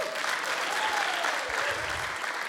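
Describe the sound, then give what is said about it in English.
A steady burst of audience clapping as the speaker takes a drink, dense and fairly loud, sustained evenly from start to finish with no voices standing out. “When we were youth pastors, I had this game that we played with our youth ministry where every time I had to take a drink, they just clapped.”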